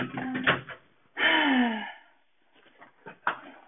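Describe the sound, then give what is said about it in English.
A door at home swings with a drawn-out creak and slams shut hard against a person, a sharp loud thud, followed by softer rattling and another hard knock as it settles. “door just slammed me hard, but that's okay.”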